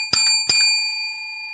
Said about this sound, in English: And our bell.